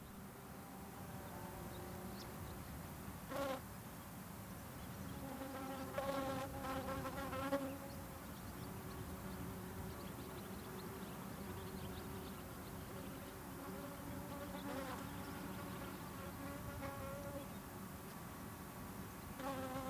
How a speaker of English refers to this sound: Stay safe, little bees.